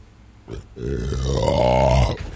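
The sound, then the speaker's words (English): A long, loud burp into a microphone, drawn out for well over a second with a low, rumbling, croaking tone that swells and then cuts off, with no talking around it. “He asked me not to not burp into the microphone.”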